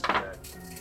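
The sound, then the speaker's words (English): A quick, hard clatter of damage dice rolled onto a tabletop during a game for a bugbear's bite attack, two sharp rattling bursts that fade quickly into quiet. “That is these dice.”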